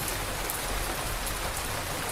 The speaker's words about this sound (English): And with eyes closed, let yourself sink deeper into the rhythm of the rain.